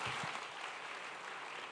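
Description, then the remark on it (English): A church audience claps together to welcome a minister coming to testify, a dense, steady wash of many hands applauding at an even loudness for the whole stretch, with no voices standing out. “Let's welcome her with a clap.”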